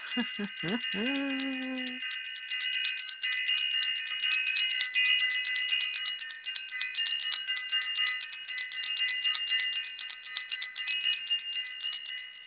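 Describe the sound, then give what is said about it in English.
A bell rings out with bright, shimmering high tones that hold steady for about twelve seconds, after a brief lower swelling tone at the start. No one speaks. “Let me ring the bell.”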